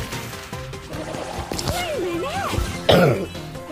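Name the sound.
coughing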